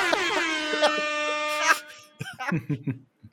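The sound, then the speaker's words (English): A loud, blaring MLG air horn sound effect holds one steady, buzzy tone for nearly two seconds, then cuts off abruptly as a person briefly starts talking. “God, if all the weeks for me to figure out that MLG air horn, this is the one.”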